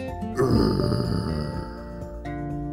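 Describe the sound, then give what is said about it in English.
A menacing growl: a rough, guttural rumble that swells in loudly and holds steady for a couple of seconds with a gravelly, throaty texture, heard on its own without talking. “The boys tried to hide in the shadows, and they tiptoed close by the enclosures until they heard a menacing growl right next to them.”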